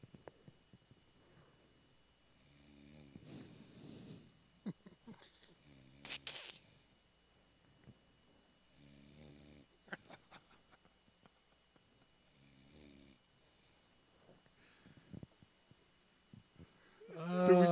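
A man snores in slow, rough, rasping pulls repeating every few seconds, fairly quiet and close, with a louder burst of sound at the very end.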